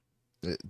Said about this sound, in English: I can belch.